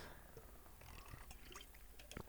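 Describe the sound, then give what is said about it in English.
A quick swig of water from a canteen: faint liquid sloshing and a few soft gulping clicks, quiet, with no talking. “And for that, I will cheers to that. I'm holding my canteen of water.”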